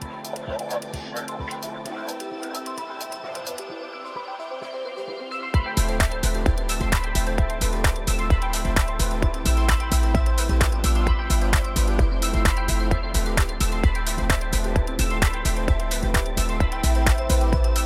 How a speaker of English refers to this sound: All right, and now we have a little jingle